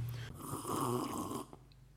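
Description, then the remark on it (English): A loud, drawn-out sip of coffee (Costa Rican Hacienda Sonora, a natural catuai from the Good Coffee Cartel), a slurping, airy rush lasting about a second, followed by a faint click and quiet; no one speaks. “Oh, that was a loud sip of coffee.”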